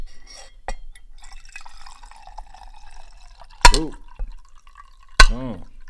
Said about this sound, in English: Man, go ahead and pour up those libations, cousin. Let's do it. Got a couple of bottles over here.